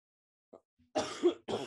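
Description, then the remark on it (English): A man coughs right up against the microphone, a loud, rough burst followed by a shorter second one, unaccompanied by any talking. “Cough into the mic some more.”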